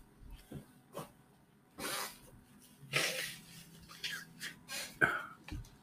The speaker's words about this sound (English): Excuse me, I had to blow my nose.